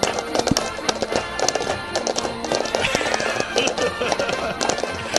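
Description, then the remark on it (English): Cups clopped against a surface imitate a horse trotting, with a steady run of hollow clip-clop knocks over 5 seconds, fairly loud, with voices faintly in the background. “My horse is trotting.”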